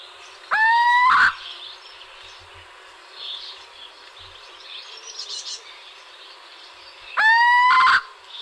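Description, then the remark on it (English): A little owl gives two nasal, upward-inflected calls about six seconds apart, each rising sharply and slightly fluttered, standing out clearly over a faint background hiss with occasional soft chirps. “the little owl has a fluttered nasal grahoot with an upward inflection repeated at intervals of several seconds.”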